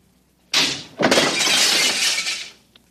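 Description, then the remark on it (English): Glass cooling tubes shatter in two loud, bright bursts, a sharp crash followed by a longer spray of breaking and tinkling shards that fades out, with no voices. “I seem to have broken the cooling tubes.”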